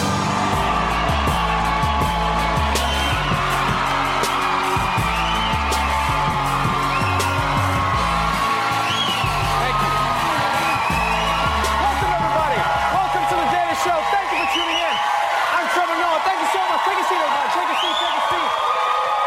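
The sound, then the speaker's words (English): The large studio audience of Comedy Central's The Daily Show with Trevor Noah in New York, March 1st, 2018, claps and cheers loudly and steadily for about twenty seconds, with scattered whoops rising above the dense applause over a pulsing low beat. “Save your applause.”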